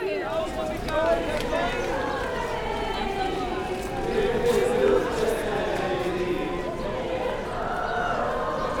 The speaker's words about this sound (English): While the shouting continues, a different group of men, not ultra-Orthodox, start up a call and response with the women.